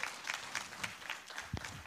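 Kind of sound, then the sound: crowd, audience applauding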